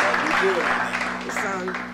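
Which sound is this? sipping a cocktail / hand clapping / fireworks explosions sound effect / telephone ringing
hand clapping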